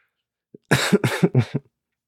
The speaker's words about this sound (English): Sorry about that cough.